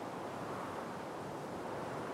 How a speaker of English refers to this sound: You fly through the portal, only to realize that you are a good 100 feet above the water. And you fall. Water's deep enough. Wind whipping by your ears.